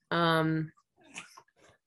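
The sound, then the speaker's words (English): A cat lets out a strange, loud, drawn-out yowl lasting about half a second, followed by a few quieter breathy, raspy noises. “Sorry, my cat just made a very strange noise.”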